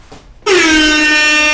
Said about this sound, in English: turn the volume down just a little bit before you get to that air horn. But you'll probably get to the air horn by the time the volume kicks needs in. To be turned down.